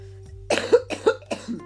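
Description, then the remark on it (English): Three quick, harsh coughs in a row, fairly loud, each a short raspy burst with brief pauses between them. No talking. “But anyway, and I promise you guys, like, all the cold is pretty much coughed up and gone.”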